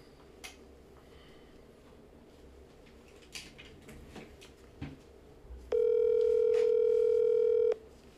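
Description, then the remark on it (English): A phone line rings over a speakerphone: one steady, buzzy ring tone lasting about two seconds, loud and clear against faint background noise and a few soft clicks. “Call Bram Goodman on speaker.”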